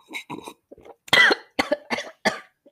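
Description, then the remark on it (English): A burst of harsh, sputtering coughs after choking on coffee that came out of the nose: a few gasping, rough coughs, then a loud cluster of four or five forceful hacking coughs in quick succession, with no talking. “I don't even know what happened when I tried to drink my coffee. It literally came out of my nose.”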